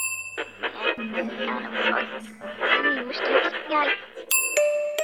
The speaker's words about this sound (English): Except for the shallow breathing of myself and Billy, the building was silent. The silence was broken by the ding of an elevator bell.